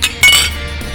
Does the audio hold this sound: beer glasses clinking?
yes